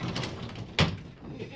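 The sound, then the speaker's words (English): A single firm thud of a door that had been left partly open being shut the rest of the way, fairly loud, with a short bang standing out against quiet background noise. “I couldn't take the knowledge that I didn't finish shutting the door.”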